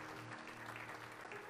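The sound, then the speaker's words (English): A crowd applauds steadily in honor of church council members for their service, many hands clapping together in a dense, continuous patter with no pauses or voices, holding an even loudness throughout. “Could we give them a hand clap today of honor for serving the church?”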